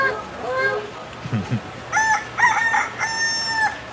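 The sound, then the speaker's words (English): A rooster, Mr. Chicken from the Mr. Chicken Show, crows repeatedly, loud, with harmonic calls in quick bursts, getting upset. A low clucking murmur comes before the crows. “Speaking of which, he's getting a little upset. I'm gonna go feed him some grain.”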